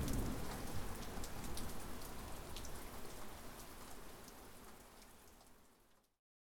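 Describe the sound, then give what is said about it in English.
Heavy rain pours down in a dense, steady hiss with a low rumble underneath, holding strong before gradually easing and cutting off near the end. No voices. “But not even buckets of rain can wash the grime of greed that coats the land.”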